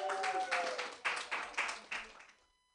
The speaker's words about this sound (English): There's one last comedian, and it's me. So clap your hands together for me. Yay.